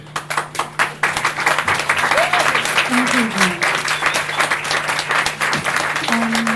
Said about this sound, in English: You can applaud again